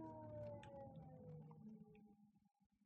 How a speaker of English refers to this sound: Oh. Nope, we got an ambulance coming. We got a siren coming.